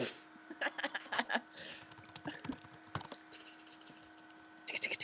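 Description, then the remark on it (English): Rapid, uneven typing on a computer keyboard while searching YouTube for a song, bursts of sharp clicks with short pauses between, over a faint steady hum; a brief quicker flurry of keystrokes near the end. “No, but I'm on YouTube and I was trying to find the outro song so I could.”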